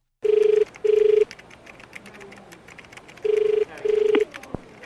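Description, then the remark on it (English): A telephone rings in the classic double-burst pattern as a call is placed to a hire company, two paired electronic rings separated by a pause, clear and steady with faint background noise and no talking. “When I rang the hire company, I could tell the person on the other end of the phone hadn't been working there long.”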